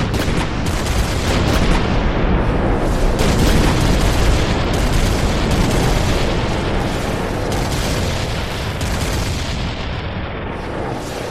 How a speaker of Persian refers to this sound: تنها راهی که به ذهنشون رسید این بود که شهر رو به توپ ببندن.